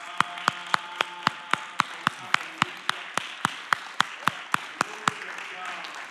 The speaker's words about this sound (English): Stand to your feet and clap your hands to the Lord this morning.